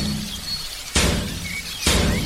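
A steel-reinforced door being smashed open with a Cat Cooler cooler used as a battering ram: two loud, crashing blows about a second apart, each with a sharp splintering burst, while faint birds chirp in the background.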